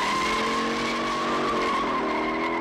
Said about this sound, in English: And now something has appeared in it. From up over the crest of the hill behind us comes Bullet's Ford Mustang. The hunted is now the hunter, and the chase is on.